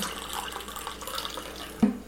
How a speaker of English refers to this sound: Is coffee being poured?